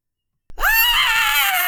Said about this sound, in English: I think you let out a scream.